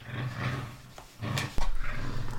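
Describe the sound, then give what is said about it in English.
A dog wanting to play makes low, rumbling play growls and grumbling whines, in a few drawn-out bursts with a brief pause in between, and nobody speaks. “This is what happens when the dog sits in on the podcast.”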